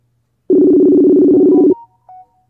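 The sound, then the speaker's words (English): A phone's outgoing Messenger call ringing tone: one loud, steady electronic burst lasting just over a second, followed by a couple of faint, short beeps, with no voices. “I was like, you had me looking at my phone thinking my daughter was calling me.”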